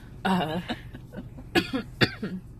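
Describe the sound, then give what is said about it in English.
A raspy throat clearing with a strained voiced rumble from a person with a sore throat, followed by two short, sharp coughs about half a second apart, with no talking around them. “Oh, and I'm sorry, I might be coughing and kind of scratchy today, because my throat hurts a lot, and drinking didn't help that.”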